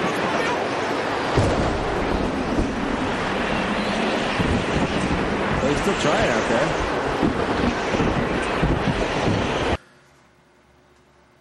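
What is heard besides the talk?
storm wind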